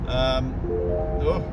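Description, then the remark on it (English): A phone's text message alert for a message from the bank TSB chimes twice, two short bright electronic tone bursts with a brief gap between them, heard over a steady low rumble of background noise. “New text message from TSB, who I'm only still with because I've got loans with them.”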